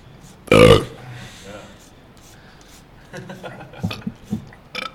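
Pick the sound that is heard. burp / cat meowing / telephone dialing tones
burp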